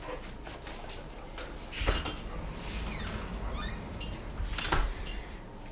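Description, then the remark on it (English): A dog whines and whimpers in thin, high cries over several seconds as its owner tries to take it outside, mixed with a couple of louder thumps and household clatter. “My poor dog is crying over here.”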